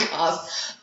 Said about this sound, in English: Because I cough. So good. So professional.